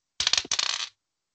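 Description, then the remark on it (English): Dice clatter and tumble across a tabletop during a role-playing game, a roll needed to survive, coming up 18: two quick bursts of bright, rapid clicks and rattles, lasting under a second before stopping. No one speaks. “You need a really high roll to survive this.”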